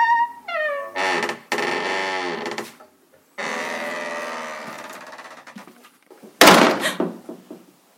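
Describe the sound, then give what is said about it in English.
A white door creaks open with a long, groaning squeal that drags on for several seconds, then bangs shut with a single loud slam that rattles briefly before fading. “You must go through the door.”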